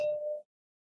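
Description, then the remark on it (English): A single clink of drinking glasses touching in a toast, a clear ringing tone that fades quickly within half a second, fairly quiet, with no voices. “Ladies and gentlemen, we're going to get that clink right at some point.”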